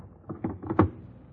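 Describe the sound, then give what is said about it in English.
An icebox door being opened, heard as a short series of dull clunks and rattles building to a heavier thud near the end, with no voices. “Open the icebox.”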